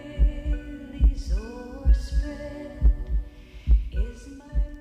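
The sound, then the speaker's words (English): A steady, deep heartbeat thumps about once a second beneath soft, sustained lullaby music with gentle melodic swells; no one speaks. “94% of crying babies calm down while listening to the heartbeat lullabies.”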